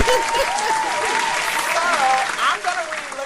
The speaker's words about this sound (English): Listen, give her another hand clap. Yeah. Give her another hand clap.